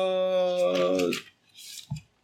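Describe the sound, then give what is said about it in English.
A long, steady voiced tone fades out, then a short, dry papery rustle of a notebook page being turned as someone checks handwritten notes, followed by a soft low thump. “I think I actually heard a page turn in the background.”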